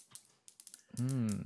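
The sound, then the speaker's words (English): A quick series of light, sharp clacks of metal fidget toy beads (Ultim beads) knocking together, ticking along unevenly for under a second before a man's voice starts speaking over the end. “So there is like a special feeling with the sound of the Ultim beads.”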